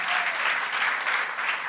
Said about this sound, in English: Give her a round of applause, too.